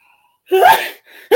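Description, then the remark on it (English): A loud sneeze bursts out with a sharp breathy explosion, followed by a softer exhale and the start of another breathy burst, with no talking. “We don't say bless you no more for people that sneeze.”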